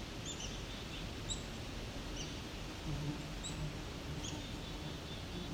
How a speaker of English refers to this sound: That what I think may be a very young cedar waxwing. I'm not sure.